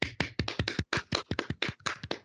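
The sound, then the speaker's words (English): A few people clap their hands in a quick, uneven burst of sharp, loud slaps, roughly fifteen claps over two seconds with no talking. “Clap it in, everybody.”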